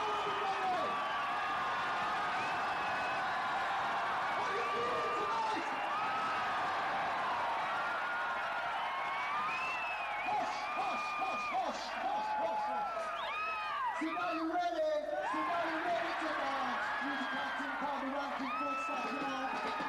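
A big concert crowd cheers without letup, a dense roar laced with many overlapping high whoops and shouts, staying loud and steady for the whole stretch.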